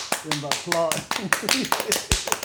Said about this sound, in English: Yes. A round of applause. A special guest at that.